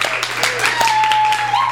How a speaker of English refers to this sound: Ladies and gentlemen, clap real loud